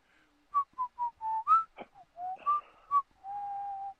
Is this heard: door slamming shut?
no